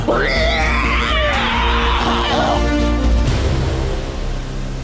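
A person lets out a long, loud scream that rises and wavers in pitch for about two and a half seconds, then cuts off abruptly into a steady low hum and background noise.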